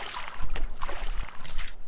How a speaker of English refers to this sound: The explorers heard a strange sound and looked over and saw Olivia and Alivia splashing around between Saffrite's teeth and her gums in a small pool of saliva.